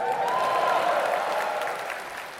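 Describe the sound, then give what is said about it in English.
A large audience at the Royal Albert Hall cheers and applauds in a dense, continuous roar of clapping with whooping voices on top, holding loud and steady before easing slightly toward the end. “Big a cheer for that.”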